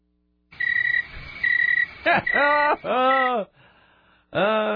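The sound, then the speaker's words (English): Crickets chirp in a loud sound effect, steady trilling bursts followed by deeper, warbling croak-like calls that rise and fall, with no one talking. “I'm sorry, that was a long way to go to this stupid cricket thing.”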